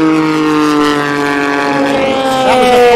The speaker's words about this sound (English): That was a Ford GT, followed by the Rebellion, or the Vaillant Rebellion, as it's known now.